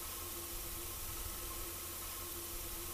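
A steady wash of static hiss fills the whole stretch, broad and even, with a faint low hum and a couple of thin tonal lines running underneath. No voices.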